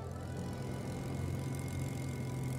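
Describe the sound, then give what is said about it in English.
The engine of a Dragonfly plane, registration ZK-AFB, with wooden propellers, drones steadily as it starts, taxis and takes off, a low, even hum with a rough, throbbing texture that holds at constant loudness throughout, with no voices. “And at 9:52 a.m, the wooden propellers of the Dragonfly ZK-AFB kicked into life, and the plane taxied out and took to the sky.”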